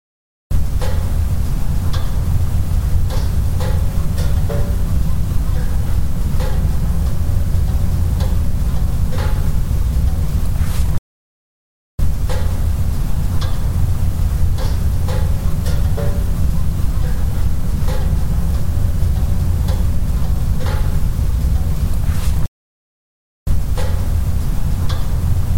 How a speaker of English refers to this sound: You can hear the Jeep pinging in the background. That's we've been driving around for a while. It's the metal cooling. So that's the pinging sound you hear. It's the metal cooling or whatever that sound is.